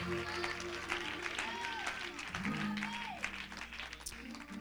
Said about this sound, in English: Hallelujah, hallelujah. Let's clap our hands to the Lord and give him praise tonight.